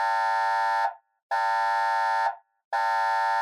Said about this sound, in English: At the same time, inside the ship, alarms start going off.